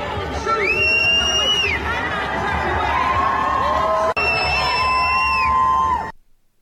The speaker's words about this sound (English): And you had a bunch of people that were screaming, you know, from the river to the sea, Palestine shall be free.